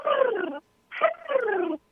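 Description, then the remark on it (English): A person vocally imitates the odd, bird-like chirping of a female American Bulldog about 2 years old: two moderately loud squeaky calls, each sliding downward in pitch, separated by a short pause. “She sounds like she's chirping like a bird or something.”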